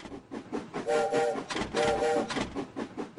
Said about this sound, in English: This is so cute. I love trains.